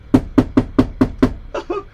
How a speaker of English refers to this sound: Look, behind those trees over there, there's a little house over there. A real little house. More like a broken shed. Let me see. Let me go over to this shed over here, this little hut, and let me knock on their door.